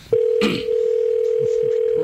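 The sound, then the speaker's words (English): A steady telephone ringing tone hums continuously over the line, clear and fairly loud, with a brief burst of voice near the start and faint murmuring underneath, as a phone call is placed to comedian Rich Voss. “Let's see if he ring. Answers.”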